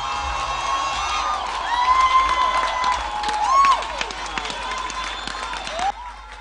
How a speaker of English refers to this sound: Somebody clap your hands for Jesus.